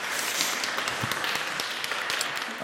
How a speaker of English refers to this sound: I thought you read brilliantly. There are a lot, I think, a little round of applause for that.